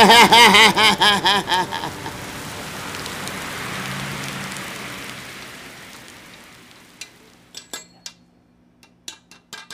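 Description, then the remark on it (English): Steady rain hisses, swelling into a broad rolling roar of thunder that fades away, leaving a scatter of sharp drips and taps at the end. It opens with a warbling tonal sound. “That's why he hit that thunder.”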